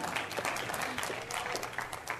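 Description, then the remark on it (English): An audience at a sermon breaks into steady applause, a dense patter of many hands clapping at once that holds at an even, moderate loudness throughout the short stretch. “You can clap.”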